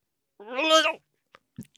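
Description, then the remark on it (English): A person imitates a cat's meow, a single drawn-out, rising-and-falling mew lasting about half a second, clear, followed by a few faint clicks and a soft thump. “Oh, is that your cat? No, that's me actually.”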